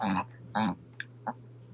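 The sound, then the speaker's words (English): Two short, harsh snorting bursts, followed by a couple of quieter little snuffles, like a small animal making a pig-like snorting cough over a low steady hum. “Can you hear him? Yeah, he's coughing. He does this all the time.”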